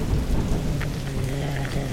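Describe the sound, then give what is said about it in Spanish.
Light rain falls steadily on an old, wet Spanish cobbled street, a continuous soft patter of drops with a low rumble underneath and no voices. “Estoy mojado por la ligera lluvia.”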